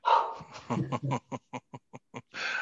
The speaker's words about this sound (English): There's a dog in the back. Maybe we'll cut that out.